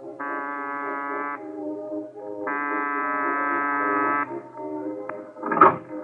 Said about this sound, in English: It's boarded up? There's a bell here, this side door.